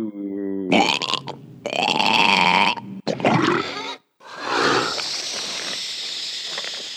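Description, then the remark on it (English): Deep, wet Sarlacc monster burps and guttural grunts, sounds from Return of the Jedi, roll out in several long, loud bursts, ending in a sustained gurgling, hissing belch that slowly trails off. No one speaks. “Up next, we got Sarlacc sounds.”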